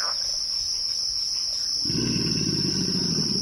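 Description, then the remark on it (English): A steady, shrill chorus of frogs and insects fills a Louisiana bayou, then about halfway through a deep, rumbling alligator grunt rises and keeps droning under the chorus. “Kim Wilson recorded this chorus of bird songs, frog calls, alligator grunts, and the squeal of an amphibian being skewered by a heron in the primordial waters of the bayou.”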